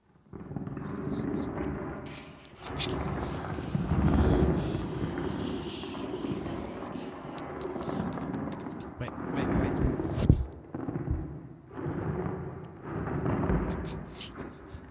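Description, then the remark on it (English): Someone rubs and scrapes the microphone for about fifteen seconds, making a loud, continuous muffled rumble with crackly bursts and brief dips, a rough attempt to mimic the sound of rain. “I feel bad for the audio listeners that didn't get to see that and just heard me like rubbing their eardrums.”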